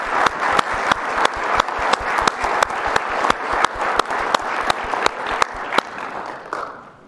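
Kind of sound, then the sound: crowd, audience round of applause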